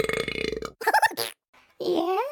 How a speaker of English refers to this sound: And, you know, like I said, I had a couple beers before I went into the grocery store, and I let out this big, huge belch, you know, wearing a mask.